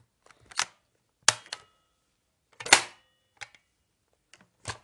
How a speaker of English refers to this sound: Now I'm just going to give my pencils a sort.